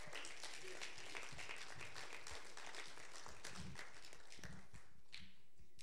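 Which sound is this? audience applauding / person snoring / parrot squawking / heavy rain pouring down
audience applauding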